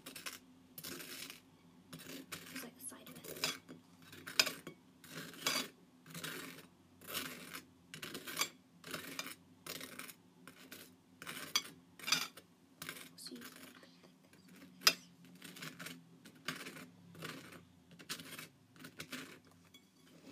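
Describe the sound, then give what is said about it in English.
A butter knife scrapes butter across crunchy toast in steady, rasping strokes, roughly one per second, repeating about twenty times at a fairly even loudness with no talking. “we're gonna slice the butter onto the toast”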